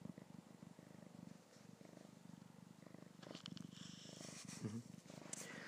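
cat purring

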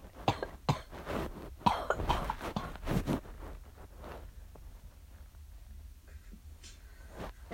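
coughing

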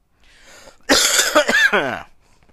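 person coughing

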